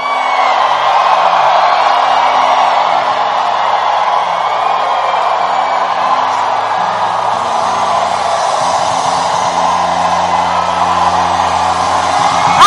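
A large crowd shouts for joy, whooping and cheering continuously, a dense, loud roar of many voices that stays steady for the whole stretch with no single voice standing out.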